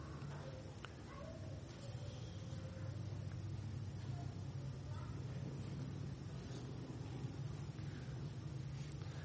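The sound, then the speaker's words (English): A motorcycle engine rumbles steadily somewhere outside, a deep continuous drone that holds for several seconds at moderate, somewhat muffled volume, with no voices over it. “It is motorcycle time, is it not?”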